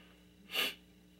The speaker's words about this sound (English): That sniff is not part of the song.